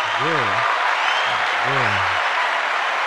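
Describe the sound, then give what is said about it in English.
A clapping sound effect: a steady wash of dense applause runs the whole way through, with a voice calling out twice over it in short rising-and-falling bursts. “You putting the clapping thing on there?”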